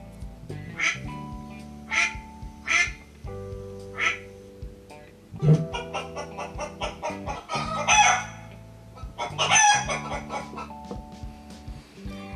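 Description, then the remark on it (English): A duck quacks in short repeated bursts, then a rooster crows loudly with long drawn-out calls, with soft music playing steadily underneath. “Ducks and chickens are examples of birds.”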